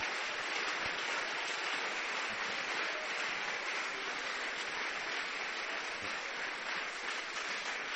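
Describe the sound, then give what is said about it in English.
An audience, called on in English and Portuguese to keep clapping, claps steadily: a dense, even wash of many hands applauding throughout with no pauses and no voices. “Keep clapping. Continua batendo palmas.”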